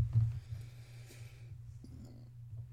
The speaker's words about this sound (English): I did, like, lean back. You probably heard it, but I burped. So disgusting. My apologies, but, like, whatever. It's because I ate a lot of Chex Mix, because I'm addicted to Chex Mix.